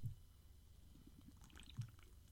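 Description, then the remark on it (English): Faint liquid sounds from a just-opened can of beer made with mandarin peels: a soft fizzing spray of froth and a few small drips and dribbles onto a recording desk, with a couple of low thumps, no voices. “Not only have I sprayed froth everywhere, I've also dribbled some on my recording desk, so it's going very well.”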